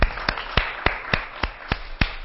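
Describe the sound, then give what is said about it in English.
Steady hand clapping given as praise to God, about eight sharp claps in a regular rhythm at a moderate pace, clear over a low background hiss with no talking. “So let's give God a warm hand clap of praise.”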